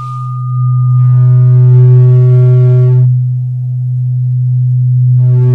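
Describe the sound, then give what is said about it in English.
A loud, steady electronic buzzing tone played to the right ear during a hearing aid adjustment test, low and constant, with a brighter, harsher overtone layer switching on and off partway through. “It's like a buzzing sound.”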